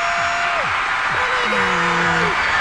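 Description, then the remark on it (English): A large crowd at the 2005 American Idol finale cheers in a loud, unbroken roar as the winner is announced, with scattered whoops and sliding shouts rising and falling above the noise for a couple of seconds. “Man, listen to the crowd.”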